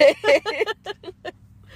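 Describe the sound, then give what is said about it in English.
A person yawns aloud, a voiced, wavering groan that breaks into a string of short pulses and trails off quieter toward the end, with no other sounds around it. “Yawn break.”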